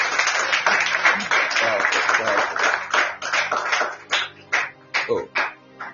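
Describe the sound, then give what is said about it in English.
A church audience claps together for Jesus in a dense, loud burst of applause that gradually thins into a few scattered, separate claps before fading out. “If you're in church, can you clap unto Jesus?”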